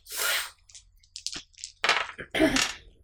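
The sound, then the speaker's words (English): Three twelve-sided dice rolled for a scrutinize check in a tabletop game clatter and rattle in a few quick bursts: a noisy shake, a scatter of small clicks, then two louder tumbling rattles. No one speaks. “I rolled a dice”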